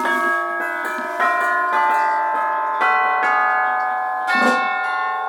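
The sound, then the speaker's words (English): Orchestral chimes struck several times in an uneven sequence, each bright metallic tone ringing on and overlapping the next, clear with no talking. “back here are the chimes from Dick Higgins, orchestral chimes.”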